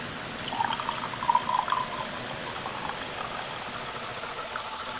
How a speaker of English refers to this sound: I am, of course, drinking red wine as usual, because I'm on a kick. And let me get a pour for you.